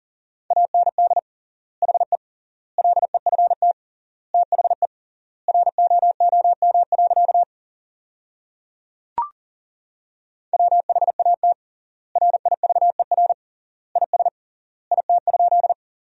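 Rapid Morse code beeps at 40 words per minute with triple word spacing, sending sentences built from the top 300 words, on a single steady mid-pitched tone in quick bursts of dots and dashes separated by long silent gaps, with a brief click partway through and no voices.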